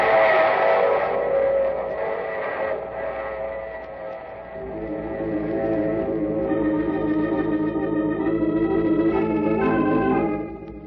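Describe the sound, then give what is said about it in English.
A train rumbles along steadily, then a long, loud multi-tone whistle sounds and holds for several seconds over the running noise, with a slightly echoing, reverberant quality. No voices. “I take this same train every week at the same time.”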